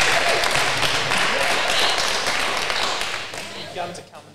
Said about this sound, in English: Give her a clap, guys. Well done.